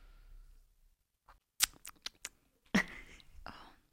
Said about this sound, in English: Anyway, let's get tasting. Go on, have your first sip. Bit of ASMR. Yeah. Ooh, that's horrible.